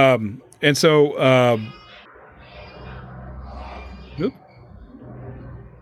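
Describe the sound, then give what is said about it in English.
A low, steady rumble of truck traffic drones on for several seconds, following a few loud, harsh calls at the start, with a brief rising chirp near the end. “Sounds like truck traffic.”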